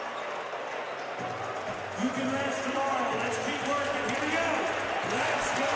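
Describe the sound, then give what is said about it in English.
An arena crowd at a Dallas Mavericks basketball game against the Utah Jazz chants "Let's go Mavs" in a steady, repeating rhythm, many voices rising together over a constant roar of noise, with a basketball bouncing underneath. “Crowd chanting, let's go Mavs, as Dinwiddie works across between the circles.”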